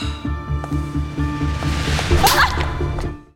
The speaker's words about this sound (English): Ooh, I love a slap. I love a woman-on-woman slap.